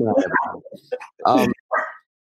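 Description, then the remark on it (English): A dog barks a few times, short sharp yaps and whiny bursts coming in quick succession before stopping abruptly. “Oh, my dog needs to chill.”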